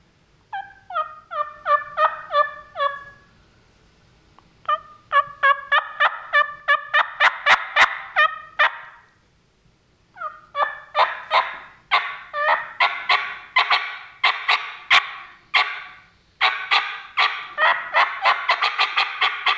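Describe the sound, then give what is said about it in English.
Rapid series of turkey yelps, clucks and cutting made with turkey calls, mimicking a flock. The loud bursts come in quick runs with brief pauses between, and no talking. “Okay, so try to sound like some turkeys here.”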